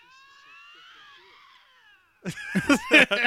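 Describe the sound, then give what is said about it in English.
Two lynxes that come upon each other in the wild yowl at each other: a long, thin, wavering high whine, then a burst of louder, harsher yowls that rise and fall in quick succession. “And it's two lynxes that happen upon each other in the wild, and they both sound exactly the same, and they both go, it's really good.”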